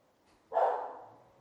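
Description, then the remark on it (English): A single dog bark bursts out sharply after a brief quiet moment, then trails off with a lingering tail, as the dog, having left the room, barks at someone. No one speaks. “He left the room and he's barking at someone.”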